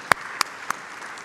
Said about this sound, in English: Let's all applaud. Come on. Come on.